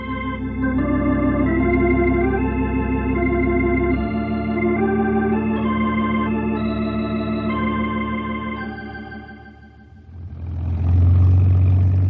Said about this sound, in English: Thought we was going to have a close-up look at your flying machine. Slim will cut the engine in just a minute.